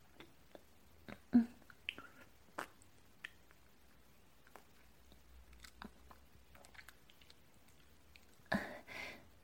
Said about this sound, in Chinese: 怎么样？已经被我嚼烂的食物，味道是不是不好啊？可我暂时也只能想到这个办法来喂你了。